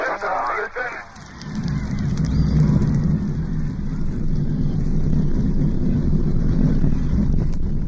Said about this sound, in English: T-minus 10, 9, 8. We have a go for main engine start. We have main engine start. 4, 3, 2, 1, 0.